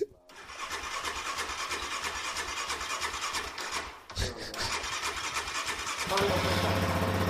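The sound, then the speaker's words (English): A motorcycle engine with dual exhaust cranks with a rapid, rasping chatter, pauses briefly, then fires up into a loud, steady throaty rumble. “and like pretty much all of them have dual exhaust.”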